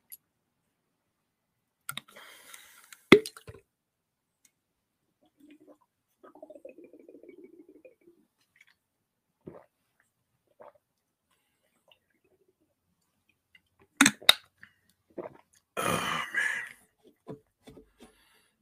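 Quiet sipping from a drink, with soft slurps and a few sharp clicks, then a louder burst of swallowing or breath near the end, with no talking.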